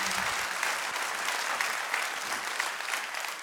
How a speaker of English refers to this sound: Now somebody give Jesus a hand clap in here today. Amen.